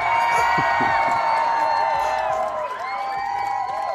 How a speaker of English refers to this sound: Do you like that applause? Oh, shit. Yeah. It's about fucking right. Time I got an applause for my shit.